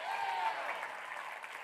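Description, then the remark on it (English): A large audience claps steadily and loudly, with scattered voices shouting "bam" in the first moments, forming a dense, continuous wall of applause that fades only slightly toward the end. “Clap your hands, would you, right now, and shout bam!”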